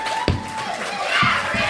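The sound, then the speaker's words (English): An audience shouting: a loud, steady wash of many voices shouting over one another, with a couple of sharper bursts cutting through the continuous crowd noise. “Shouting. Loud there's noises.”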